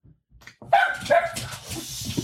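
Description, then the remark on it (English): Dogs barking in a quick, excited burst, sharp yips and barks overlapping, fading into a busy mix of softer barking and background noise. “Dogs, apparently.”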